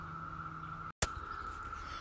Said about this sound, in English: Today, I am recording outside, so we have the beautiful sound of nature in the background. Birds singing, cicadas chirping. Sounds like a spaceship.